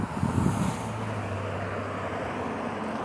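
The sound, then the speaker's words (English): Steady roadway noise from multiple cars passing, going north or south, a broad whooshing rumble with a low engine hum, slightly louder at the start, then holding even throughout. No one speaks. “Multiple cars going north or south, depending on their final destination.”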